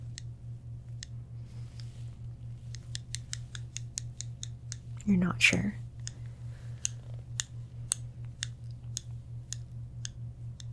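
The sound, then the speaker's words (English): Plastic scissors snip repeatedly in a quick, steady series of sharp clicks over a low constant hum, with a brief louder rustle midway and a short spoken remark. “It's a plastic scissors”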